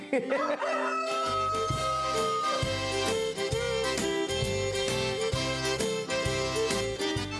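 A show chicken crows once at the start, then a rhythmic music track with a steady bass line takes over and plays loudly to the end. No one speaks.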